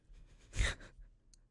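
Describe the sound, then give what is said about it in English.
A single close, breathy yawn swells and fades over about half a second, a soft airy exhale with no talking, followed by quiet room noise. “I was in the middle of a yawn.”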